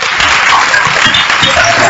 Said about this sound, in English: The way you clap also will show that you are listening or not.